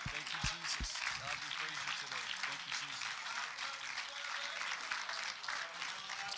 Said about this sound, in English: Let's just give God a hand clap of praise.